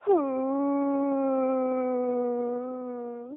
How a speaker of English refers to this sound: Whale voicemails, nothing sounds better than a whale.